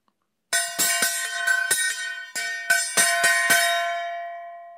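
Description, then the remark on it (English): A loud metallic clanging like a gong or cymbal, struck about ten times in a quick, uneven rhythm, the overlapping ringing tones swelling and then slowly fading after the last hit. “If I speak in the tongues of men or of angels, but do not have love, I am only a resounding gong or a clanging cymbal.”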